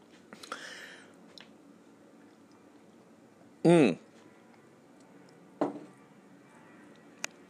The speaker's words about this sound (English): I'm drinking a fresh glass of ozonated water. Ozonated for 20 minutes.